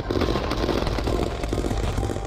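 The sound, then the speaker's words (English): Rapid, continuous gunfire with no fire returned, a dense stream of sharp cracks and pops blurring into a steady rattling barrage with no pause, loud and without any voices. “They keep shooting, keep shooting, keep shooting.”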